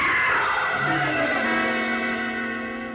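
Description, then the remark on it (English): A woman lets out a long, high-pitched scream that holds loud and steady for about three seconds, its pitch wavering slightly before it begins to fade. “Somebody screamed!”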